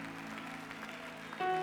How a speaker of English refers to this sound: Y'all clap your hands. That's good.